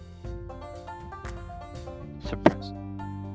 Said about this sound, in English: No, sorry. That wasn't me. Did you sneeze? What was going on? Yeah. Sorry. Bless you.